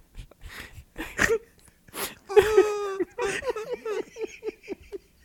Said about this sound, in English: That gasping was me holding my fucking tongue because I'm going to say something really bad.